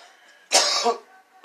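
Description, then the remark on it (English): A harsh cough after taking a big dab bursts out, a ragged hacking spasm lasting about half a second, followed by a brief pause and the sharp start of another cough. “Sorry about all the coughing. I should never do that big of a dab again when we're live.”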